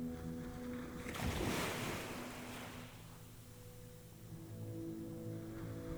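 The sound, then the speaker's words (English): Gentle waves of a calm sea at sunset wash softly against the shore, one swell rising and receding, over a steady low hum of calm open water. No voices are heard. “The sea is still calm, with the setting sun now dappling the water with copper and crimson.”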